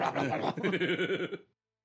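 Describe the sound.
A person imitates a goat's bleat: one loud, wavering cry with a quavering tremble, held for over a second before cutting off into silence.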